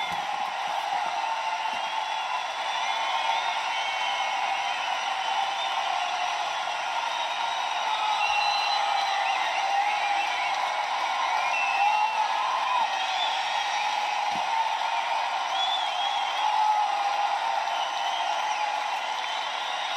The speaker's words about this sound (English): I'm gonna let this crowd fill in right now. 54-23. Take a listen.